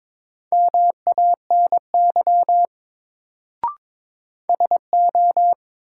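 Morse code beeps at one steady mid pitch, sent at 22 words per minute in a drill of the top 100 words, keyed in quick dots and dashes across two bursts separated by a pause, with a single sharp click in the gap. No one speaks.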